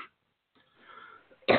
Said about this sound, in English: Yeah. It's still there. So I still got a little hack going, a little sniffing going.